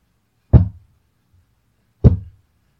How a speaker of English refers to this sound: So, but I was in the shower, and I hear very slowly and very deliberately three knocks, just... That sounds really good, by the way. It does.